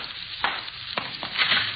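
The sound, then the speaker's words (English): Water runs steadily from a tap, a constant hissing rush broken by a few brief splashy clicks. It is fairly soft and even throughout, with no voices. “Water's running someplace.”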